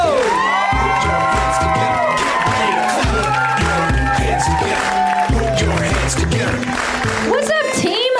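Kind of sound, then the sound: crowd, audience cheering and applauding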